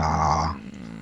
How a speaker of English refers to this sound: Or I want to promote you, puppy.